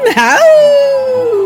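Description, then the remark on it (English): Human voices imitate a howl in a promo for the film Howling Village coming to Dread: a brief warbling rise, then one long, steady tone that slowly sinks in pitch and holds loud for over a second, with no other sounds. “Coming soon to Dread, Howling Village.”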